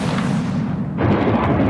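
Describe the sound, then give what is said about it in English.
A Ukrainian missile strikes a Russian helicopter, bringing it down in a loud explosion: a sustained low rumbling roar that erupts into a sharper, brighter blast about halfway through, then keeps crackling and booming. “This is the moment a Russian helicopter was brought down by a Ukrainian missile.”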